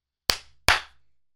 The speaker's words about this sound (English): He just keeps on clapping. I like the three claps. Yeah. The three well-spaced claps.